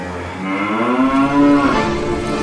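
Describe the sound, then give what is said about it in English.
A single drawn-out, lowing moo from a sea cow in the story Sue and the Sea Cow, loud, its pitch swelling slightly in the middle before trailing off, with no talking around it. “Will the sea cow be her friend, pet and soulmate?”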